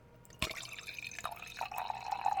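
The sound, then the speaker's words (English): A steady stream of liquid pours into a container after a sharp initial splash, its gurgling tone shifting upward as the vessel fills. No voices are present. “Is it urinating or wine pouring?”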